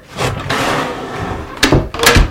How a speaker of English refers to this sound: Meanwhile, the crone nodded encouragingly. Mm-hmm. and stepped back to open her door wide.